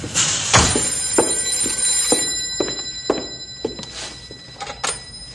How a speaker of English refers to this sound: Oh, the telephone's buzzing.